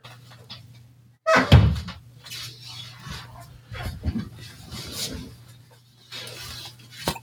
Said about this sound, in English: Wait, did you just open the door to kick him out? Yeah. And now the door is... closed. Closed. It's closed. I closed it because I didn't want the dog to get back in.